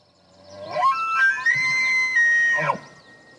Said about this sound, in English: That's an elk. Yeah. That's not what I expected. So one more time. Interesting. So it's sort of like a that, like, it's got these like weird over and under kind of things. It's like a whistling a bird.